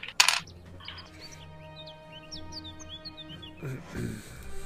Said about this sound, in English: So each player rolls three dice. So go ahead and roll whoever's playing. Three D6? D6s.